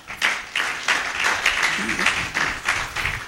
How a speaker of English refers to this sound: We celebrate you. Let's clap for them.